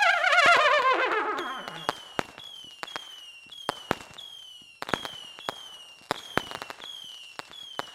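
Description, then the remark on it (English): Fireworks go off: a whistling rocket rises at the start, then a series of sharp pops and bangs ring out at an uneven pace, each trailing a faint descending whistle. No voices are heard. “Can you put fireworks sound effects on that, please?”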